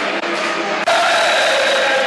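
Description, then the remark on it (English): Dense, roaring football crowd noise at the Den, an estimated crowd of about 8,000, a steady wash of many voices that swells suddenly louder partway through and stays loud, with a tonal chant-like hum running under it. “Like I say, a good vibe around the Den. You can hear it, can't you?”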